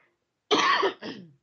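A loud cough in two bursts: a strong harsh hack followed quickly by a shorter second one, with no talking.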